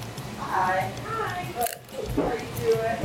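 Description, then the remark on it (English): Crunchy chewing of crispy, salted homemade chips, cut and deep-fried in canola oil, with a sharp bite-crunch about halfway through and a voice murmuring faintly beneath the steady mastication. “These chips come to us, and then we cut them up and deep fry them in canola oil.”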